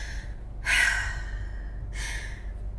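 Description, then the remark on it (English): Two short, sharp breaths demonstrated as quick breathing, a quick inhale followed by another about a second later, with no talking and a low steady hum underneath. “But actually, if you do short breaths, that gets you in more of a hyper state.”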